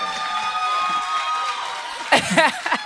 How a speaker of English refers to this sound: Good man. Good man. Yeah. Clap for him. Clap for him.